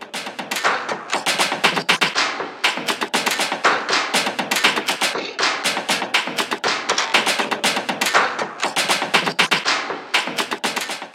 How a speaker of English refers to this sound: To me, that's a crunchy, high-energy, industrial, almost stomp-reminiscent drum beat. Yes, and it's very typical of the Groove Shadows concept because it's made up of a bunch of kind of strange little bits of sound design and stuff